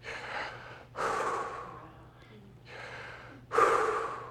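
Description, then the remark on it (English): Slow, deep breaths drawn in and pushed out, four airy breaths in a steady alternating rhythm, clearly audible with no talking. “But this guy was doing some study on breath and the sounds of breath, and the name, the deepest, most profound name of God that we have in the Hebrew language actually sounds more like you breathing.”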